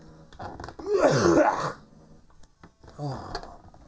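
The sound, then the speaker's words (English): A harsh, raspy cough bursts out and lasts about a second, followed after a short pause by a quieter, throaty second cough. “I'm now about to cough.”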